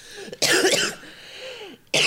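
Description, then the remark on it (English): A single loud, harsh cough bursts out, followed by quieter breathy sounds and the start of another sharp burst at the end. “Are you going to pause for breath and then you coughed?”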